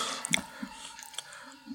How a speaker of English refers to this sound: I'm chewing pizza. Hold on. All right.